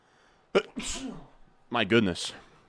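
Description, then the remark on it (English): A loud sneeze bursts out with a sharp sudden onset and a sibilant spray, followed a moment later by a brief voiced reaction, with quiet room tone in between. “I hope that somebody said bless you.”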